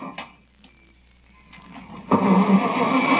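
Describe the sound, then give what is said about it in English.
A car engine cranks but fails to start: a low rumble and a few clunks, then a loud, rough grinding burst that keeps churning without catching. No one speaks. “Come on, car. Could your car be out of gas?”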